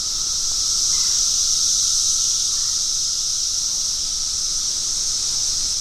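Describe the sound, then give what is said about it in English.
A 17-year periodical cicada chorus recorded in Washington, D.C., fills the whole stretch: a dense, high-pitched buzzing drone that stays loud and steady without pause, with a faint lower whine running underneath and no voices. “Parts of the eastern United States have been gripped by cicada mania and overtaken by those signature cicada song stylings. like this ruckus of Brew 10 we recorded in Washington, D.C.”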